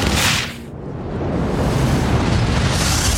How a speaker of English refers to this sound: The wall bursts, and there's a roaring rush of air as the atmosphere rushes into space.